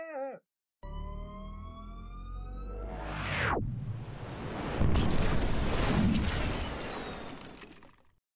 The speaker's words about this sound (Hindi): ओए वो सामने देखो, हमारे सामने एक धमाका अभी होने लगा है।